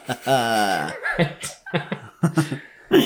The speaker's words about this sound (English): Excuse me. We're both coughing tonight. Sorry, yeah. Team. I'm coughing less.